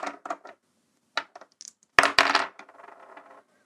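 Polyhedral dice, a D8 and a D12, clatter onto a hard table in quick bursts, several sharp clicks and bounces, then a louder tumbling roll that rattles and settles to a stop.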